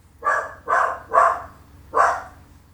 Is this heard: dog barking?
yes